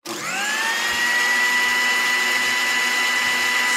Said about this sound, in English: Is that a blender? How did you get a blender in here? Oh, sweet, some juice.